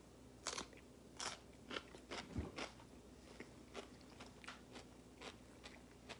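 Crunching as a big, thick-cut Dollar Tree pickle is bitten and chewed, with a series of sharp, wet crackling bites repeating irregularly over several seconds, no talking.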